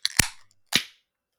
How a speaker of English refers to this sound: So this is our first beer for the long-awaited Brattleboro Special from Hermit Thrush Botanical Gold. 3, 2, 1, crack.